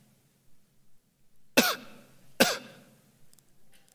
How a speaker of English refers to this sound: Like an incessant cough.